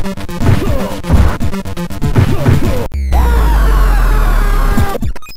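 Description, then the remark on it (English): In the American Gladiators NES game, a player is knocked off during the jousting event. A clattering run of crashing, whacking sounds gives way to a loud, sustained scream effect whose pitch slowly falls for about two seconds before a brief final clatter. “Yeah, it's during the jousting game when you get knocked off. Here is the scream.”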